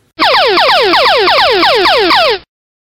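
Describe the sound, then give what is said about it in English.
A quiz show Daily Double sound effect: a loud, quick string of about nine bright electronic tones, each sweeping sharply downward in pitch, repeating rhythmically for a couple of seconds with no talking. “Daily Double.”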